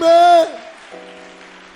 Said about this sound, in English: Clap your hands and shout a big amen.